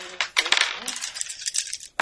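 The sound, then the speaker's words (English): Five dice clatter and rattle across a table in a quick burst of clicks, settling over about two seconds, with one more sharp clack at the end. “All right, five dice.”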